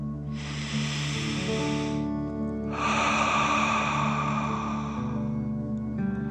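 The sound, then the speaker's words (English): A deep breath drawn in through the nose, then a longer, breathy exhale out the mouth during a guided breathing exercise, each lasting a second or two over a soft, steady musical drone. “Breathe in through your nose, filling up your chest and belly, and then out through your mouth, pretending you are breathing fire.”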